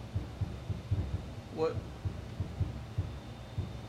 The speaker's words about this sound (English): What? Oh, that's the bar next door. Sorry if you guys can hear that. That is the bar next door to me is just insanely loud, and it kind of sucks, but hopefully the mic doesn't.